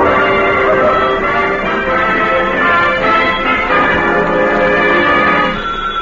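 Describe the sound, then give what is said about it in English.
A telephone bell rings loudly and steadily, its bright metallic jangle filling the moment with no one speaking over it. “If that's that kid again, I wish Alexander Graham Bell had minded his own business.”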